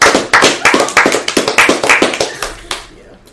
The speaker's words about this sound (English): Clap it up